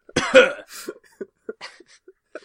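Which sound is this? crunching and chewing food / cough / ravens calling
cough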